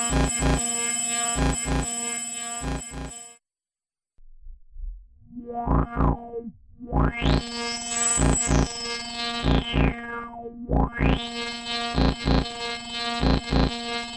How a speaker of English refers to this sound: So this is just all dry coming out of the crossfade array.